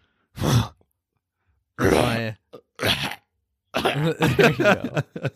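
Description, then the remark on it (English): A person imitates an animal's sneezing grunt with a series of short, breathy, throaty bursts, a few spaced apart then a rapid cluster, moderately loud with no words. “Well, it sounded just kind of like a sneezing type of grunt.”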